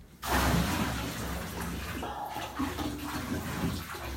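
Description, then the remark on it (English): Cold water pours steadily from one of two jugs into a filling bathtub of very hot water, a continuous splashing rush that starts abruptly and keeps going without a break. “Rob's here with two jugs of cold water.”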